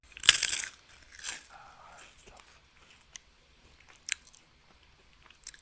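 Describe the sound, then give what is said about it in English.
A loud, crisp crunch as something hard is bitten, followed by several seconds of chewing with scattered sharp crackles, no voices. The snack being eaten is not a cereal. “It sounds like he has to chew it a bit afterwards.”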